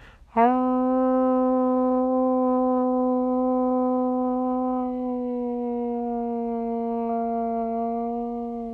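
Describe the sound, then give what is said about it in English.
A person lets out one long, loud, sustained wolf-like howl, holding a steady mid-pitched, tone-rich note for about eight seconds with only slight wavering and no other voices. “And finally, guys, I'm gonna howl for all my wolf family out there, including my wolf brothers.”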